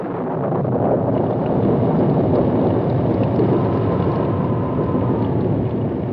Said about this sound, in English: Rain began with a thunderstorm and fell steadily all night.